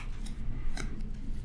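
A deck of cards being shuffled, with a few crisp, papery riffling bursts over a steady low rumble.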